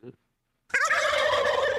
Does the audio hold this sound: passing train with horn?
no